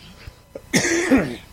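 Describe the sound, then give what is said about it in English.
A loud cough bursts out, followed quickly by a second rougher cough with a throaty edge, then the sound trails off. Nobody speaks. “We are Tech and Coffee, and if I can do this without coughing, it'll be amazing.”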